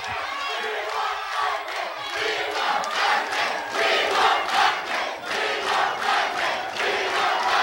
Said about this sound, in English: The crowd chanting, "We want Bundy, we want Bundy." They want to see Bundy get on back in there with Doc.